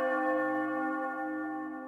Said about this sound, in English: Only the most fortunate listeners will remember that I used to mark each phase of the episode with the bell background sound. It's the one I still use. This one.